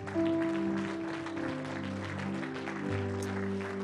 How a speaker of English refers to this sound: Once again, could you just clap your hands unto the Lord?